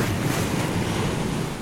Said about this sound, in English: Okay, so you attempt to levitate the boat at the last moment, but it does not fare well. But the boat goes crashing kind of nose first into the sea, and then swiftly gets bounced back up by its own buoyancy.